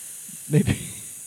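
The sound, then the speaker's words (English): Two quick, breathy hisses in close succession from Medusa's snakes, a snake-like sound with a faint voiced rasp underneath, against a quiet background with no talking. “I'm going to counsel your snakes, and we're going to hook you up with the devil.”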